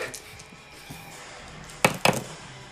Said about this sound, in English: Roll your dice. Oh. Okay, now put them in your unused bottom left. I roll them.